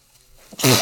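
A single sneeze bursts out loud after a brief quiet intake, a sharp explosive rush of breath with a voiced edge, standing alone without talk around it.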